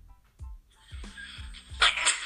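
A single sharp sneeze bursts out near the end, loud and hissy, over a soft, steady thumping beat in the background.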